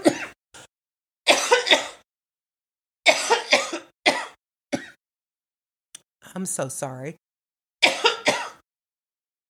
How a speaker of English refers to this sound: This cough does not want to go away. I'm not choking. I'm okay. But yeah, see, that's that stuff that's going on. COVID left, but this lingering cough just doesn't want to go.